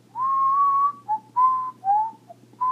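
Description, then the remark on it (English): A person whistles a wandering, tuneless string of notes that is not a song: one long held tone, then several shorter pitches that dip and rise, clear, with a faint low hum beneath. “Nope, my friends, I not even whistle a song. I'm just whistling, just like I was doing with you earlier.”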